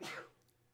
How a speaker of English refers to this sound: God bless you. Sorry.